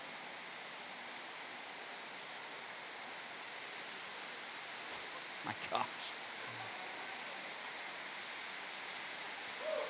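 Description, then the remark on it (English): A steady, even wash of rain and hail falling throughout, with a few sharper knocks near the middle where a voice briefly exclaims, and a short higher tone at the very end. “Maybe the rain will stop, or the hail while I do this.”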